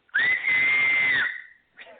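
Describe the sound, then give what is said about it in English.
A single loud, piercing two-handed finger whistle holds a steady high pitch for about a second, sliding slightly up at the start and fading out, followed by a brief soft noise. “You know, people can whistle with one hand. I have to do it with two.”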